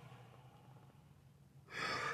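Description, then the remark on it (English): A person yawns into the microphone, a loud breathy intake that swells suddenly after a quiet stretch of low background hum. “Never yawn until I start speaking on the episodes.”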